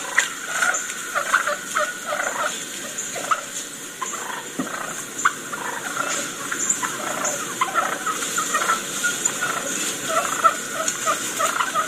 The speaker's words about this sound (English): these sounds right here that you're listening to are what the turkeys do, hens do, and gobblers do throughout the day. These birds are used to hearing this stuff.